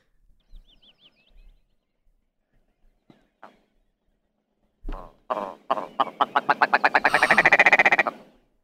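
bird mating call

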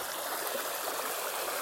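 flowing creek water

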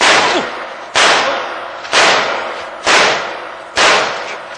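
gunshot

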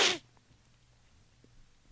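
sniffle or sneeze

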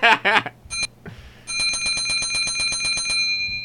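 bell ringing

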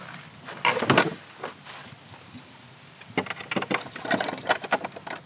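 keys jangling

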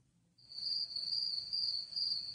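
chirping crickets sound effect

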